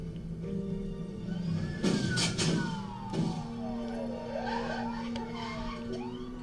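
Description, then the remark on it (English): Police car sirens wail as the cops approach, coming out of Haddonfield, with overlapping tones sweeping up and down over a steady low rumble of traffic, fairly loud and continuous, with no talking. “Okay, so the cops are coming.”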